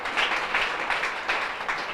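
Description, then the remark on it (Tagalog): A church audience applauds steadily at the preacher's call to praise God, a dense, continuous patter of many hands clapping at a fairly strong level, with slight swells in intensity and no speech over it. “Malakas na palakpak.”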